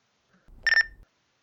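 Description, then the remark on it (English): A phone that was not muted gives a brief electronic notification beep, a short steady high tone lasting a fraction of a second, clear over a faint low rumble, with no talking. “Did I really not mute my phone? For real?”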